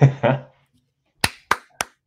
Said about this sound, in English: Way to go. History. Let's give a round of applause because we don't see this too often, honestly.